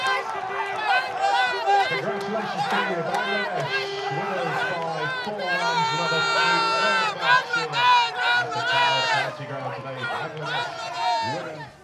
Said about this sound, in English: Here we go, final ball. As you can probably tell by the sound, Bangladesh have just won this third match in this one-day international series. They win the series 2-0. And listen to the appreciation from the crowd.